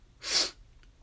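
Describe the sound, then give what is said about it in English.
A single quick, sharp sniff, a hissy burst of air lasting about a third of a second, followed by quiet room tone. “Nice sniff. I'll do it again.”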